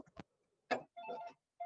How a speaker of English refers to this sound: Oh, phone's going. No problem. Sorry about that.